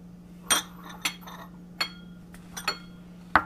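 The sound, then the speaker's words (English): Small ceramic bowls and dishes clink against a surface several times at irregular intervals as trimmed microgreens are put into mini bowls and flat dishes, crisp, with a faint steady hum underneath and no talking. “And my leeks can go in one of these kind of flat dishes.”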